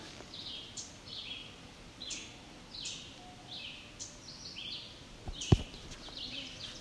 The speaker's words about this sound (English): There's our ovenbird again.